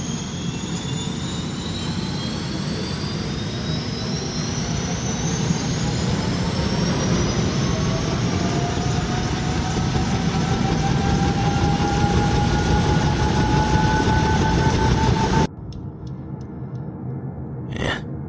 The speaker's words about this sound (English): For example, a set of helicopter rotors firing up. And in case you're wondering, this is what that sounds like.